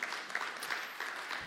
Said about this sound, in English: Give a big round of applause to Pastor Katie, playing the part of Philemon.